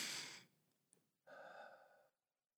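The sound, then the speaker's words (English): An airy breath in through the nose, a brief pause, then a longer, steady breath out of the mouth through pursed lips with a soft, faintly whistling hiss, as in pursed lip breathing. No one speaks. “but it's called purse lip breathing. So you breathe through your nose, and then you exhale out of your mouth.”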